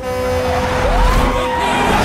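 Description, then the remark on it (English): A truck horn blares loudly and continuously, its steady droning tone held for about two seconds over a rumbling engine and road noise. “Truck, stupid! What? Truck!”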